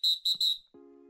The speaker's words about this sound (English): Week 2 picks, week 1 review, blow the whistle, let's do this podcast.